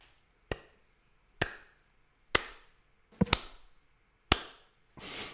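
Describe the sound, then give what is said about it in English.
A series of sharp hand claps coming from some way off up ahead, about six crisp smacks spaced roughly a second apart, one quick double near the middle, ending in a softer, rougher clap. No voices. “You hear a gentle clapping sound.”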